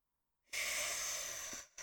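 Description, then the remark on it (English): A heavy, forceful exhale through the nose, loud, lasting about a second after brief silence, followed by the start of another sharp breath, from someone breathing angrily. “I apologise for the angry breathing in this episode, but I'm just so cross.”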